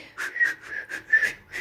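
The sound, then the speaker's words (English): A breathy, halting whistle, several short airy puffs with a thin wavering tone, fairly quiet, as if someone is trying to whistle casually and not quite managing it. “tried to whistle. Casual.”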